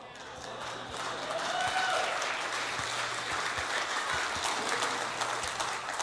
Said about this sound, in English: You know you're clapping that the Bengals lost, right? I'm just throwing that out there.